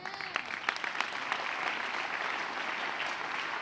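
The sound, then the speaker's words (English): A crowd claps steadily in sustained applause, a dense wash of many hands that starts with a few sharp claps and swells into a full, continuous patter. “Oh, you're not clap your hands well.”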